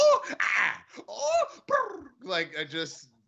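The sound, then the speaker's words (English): A person's voice imitates a pigeon call: a string of about five throaty, warbling vocal bursts with wavering pitch, fairly loud, and no actual words, ending in a short quiet pause. “That was an unbelievable pigeon sound.”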